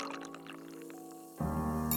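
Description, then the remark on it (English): A drink pours steadily into a glass, the liquid's pitch shifting as it fills, then a fuller, heavier gush in the last half-second. Fairly quiet, with no voices. “Lucienne wasn't one to argue, especially when her hand was pouring without her telling it to.”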